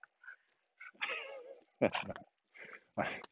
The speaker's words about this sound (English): Hey, doggy across the street. Oh. Buds. Two dogs barking. Yeah, that's what dogs do, they bark.